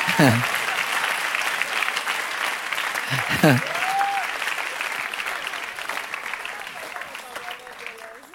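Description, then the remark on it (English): An audience claps steadily in a dense, continuous wash of applause, with brief voice cries rising over it near the start and then fading into the sustained clapping. “If you're not clapping, you're jealous, but it's okay.”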